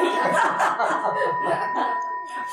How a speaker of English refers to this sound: There's the bell. We've taken ourselves to the end here.